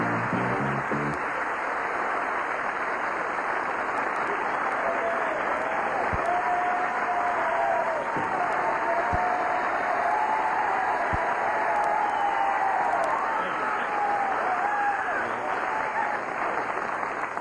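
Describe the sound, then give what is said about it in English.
Sustained, dense applause from the Flip Wilson Show studio audience on February 28th, 1974, welcoming Red Fox, fills the whole stretch at a steady, loud level, with a few whoops and cheers rising above the clapping. “Thank you very much for your applause.”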